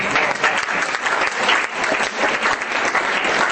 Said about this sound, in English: How many were really blessed? Yep. Okay, that's very good. Give me a clap there.